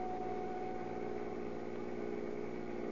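A maroon Chrysler Roadster's engine runs steadily at a low, even idle at night, with a continuous rumbling hum and no voices, filling the full three seconds at a constant level.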